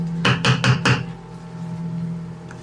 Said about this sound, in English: So I guess I'll knock on whoever's door is closest first.